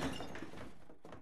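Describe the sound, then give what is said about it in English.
A sharp crash of a glass snow globe breaking on a hard floor, a single loud smash with brief scattering debris and a short ringing tail, with no voices. “With a gigantic smash, the enchanted snow globe shattered on the floor.”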